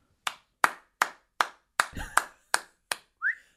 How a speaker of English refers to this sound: That is irritating. Like, who is clapping outside? And it's him.